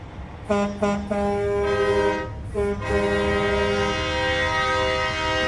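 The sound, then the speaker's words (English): Loud, overlapping air horns from the Moms for America truck and the Real America's Voice News bus blare together in competition, starting with a few short blasts and then holding into long, sustained chords. “We've got competing air horns. Let's hear it.”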